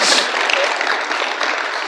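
crowd, hesitant audience clapping

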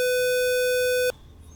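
sound effect, censor bleep tone

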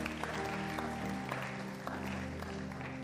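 crowd, audience clapping hands

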